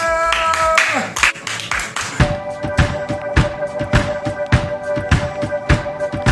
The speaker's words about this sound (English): Clap for yourself.